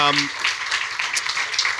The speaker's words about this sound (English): Yes, a round of applause.